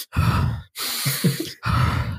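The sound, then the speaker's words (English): A voice imitates a man breathing hard as a dust cloud clears: three loud, breathy huffs in quick succession, each a rough rush of air with short gaps between. “Because he's just like super breathing hard.”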